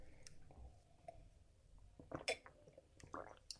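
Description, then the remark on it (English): A few faint, wet throat clicks and gulps from someone swallowing with something stuck in their throat, with soft squishy bursts spaced irregularly and no talking. “And, I'm sorry, I've just got something stuck on my throat. I'm sorry for the swallowing sounds.”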